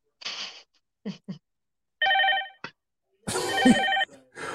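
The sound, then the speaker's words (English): A telephone rings again and again in short bursts, its bright electronic tone repeating with brief pauses, loud, with some clattering noise mixed in toward the end. “But apparently they're calling. They're not going to stop calling. And it's ringing that many times.”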